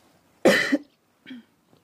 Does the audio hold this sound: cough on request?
yes